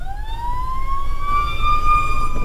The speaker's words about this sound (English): Nice. At least they have the sirens on. That means somebody's still alive.